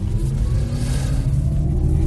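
An electric car's synthetic, sci-fi hum while accelerating or driving slowly: a steady, loud low drone with layered tonal overtones, sustained without a break for about two seconds, with no one talking.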